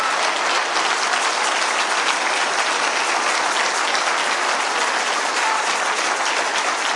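standing ovation applause

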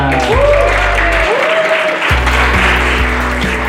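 audience applause

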